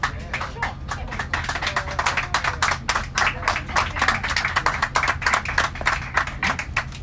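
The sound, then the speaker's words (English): Steady applause from the air crew for the passengers, about 40 of them, on a flight across the Atlantic to the United Kingdom: many overlapping claps forming a dense, continuous patter at moderate loudness, over a low constant engine hum from the aircraft cabin. “So that was the air crew applauding the passengers.”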